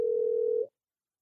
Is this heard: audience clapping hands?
no